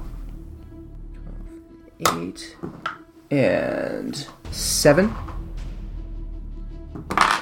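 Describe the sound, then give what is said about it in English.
Dice drop and clatter onto a table in a few quick bursts of sharp clicks, fairly loud, with a person speaking briefly between them. “Oh, a 12, and I drop my dice.”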